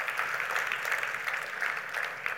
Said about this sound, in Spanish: ¿Podemos darle un aplauso a Jesús?